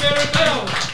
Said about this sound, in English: Round of applause for the mayor.